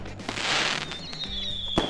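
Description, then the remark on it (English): Fireworks go off in a rapid string of sharp crackling bangs, with a high whistling streak rising through the bursts and a loud final pop near the end. “Oh, ladies and gentlemen, there's the closing fireworks.”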